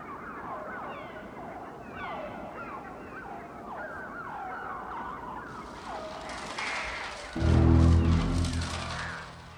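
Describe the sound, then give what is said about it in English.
The opening of the film The Birds, with dense, shrill bird screeches and chirps sweeping up and down continuously, is played over the opening of the film Jaws; a loud, low orchestral music swell enters near the end and plays over the bird cries. “So let's listen to the birds opening and the Jaws opening played over the top of each other.”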